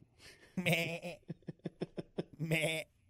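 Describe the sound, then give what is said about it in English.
A goat bleats loudly, two long wavering cries separated by a quick run of stuttering, pulsing bleats, with no other sounds around it. “much like the goat in Jurassic Park, you know, hanging off that chain. Where'd the goat go?”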